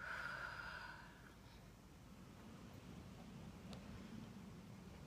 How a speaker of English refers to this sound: Breathing in and breathing out. And one more time, breathing in and breathing out.